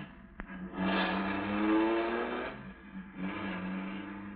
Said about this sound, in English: At the moment that she's sending the big car roaring down the driveway